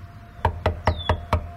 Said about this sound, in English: I knocked and waited. Nobody answered the door, but someone was clearly home.